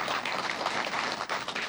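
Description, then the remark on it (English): A crowd gives itself a round of applause at a New Year's Burning Bowl service, with steady, dense clapping that fills the whole stretch at an even loudness, a broad wash of many hands with no voices standing out. “So I think we should give ourselves a round of applause.”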